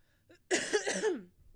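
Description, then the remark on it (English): A person coughs from smoking while reading aloud: a harsh, raspy smoker's cough, a rough wet hack lasting under a second with a strained, wheezy tail, alone with no talking. “I need to stop smoking.”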